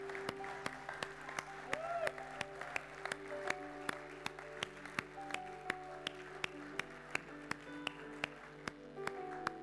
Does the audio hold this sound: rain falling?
no